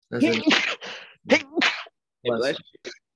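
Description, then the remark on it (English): Three sneezes in quick succession, each a voiced intake sharpening into a loud, breathy burst, spaced about a second apart. “He approves with a three sneeze.”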